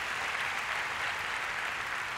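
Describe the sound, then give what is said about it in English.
The City Harvest audience claps for the Lord steadily, a dense, continuous wash of many hands applauding together at an even level throughout, with no talking over it. “Come on, give the Lord a big clap. Give the Lord a big hand.”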